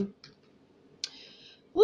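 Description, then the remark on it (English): A computer mouse at work clicks sharply once, fairly crisp, after a fainter earlier click; a person starts talking right at the end. “So if you hear the click clack of my mouse, the tapping of my keys, the rolling of my chair, know that that's what's up.”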